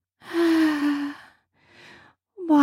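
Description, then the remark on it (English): Heavy, breathy exhalations from two people: a long loud one, a softer shorter one after a pause, then another starting, the pace unhurried as the panting winds down and breathing returns to normal. “Our panting is just still out of control. Slowly, as our breathing returns to normal.”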